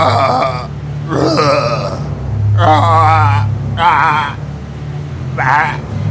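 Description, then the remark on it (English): A man's voice imitates a goat, letting out about five strained, wavering bleats in short bursts, loud over a low steady hum. “And his screaming, grunting voice begins to bleat.”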